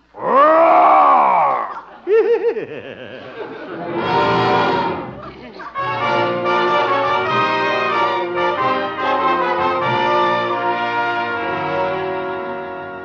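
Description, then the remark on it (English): A man's voice, in a bearskin costume, mimics a bear with a loud, drawn-out growling roar and a few rough grunts, then orchestral music takes over and plays steadily to the end. “Guess this is my night to growl.”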